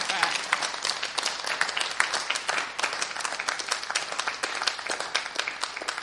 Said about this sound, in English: And if anyone else is feeling excited, then maybe they could wave their hands and have a clap.